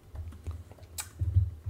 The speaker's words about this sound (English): I hear some keyboards working.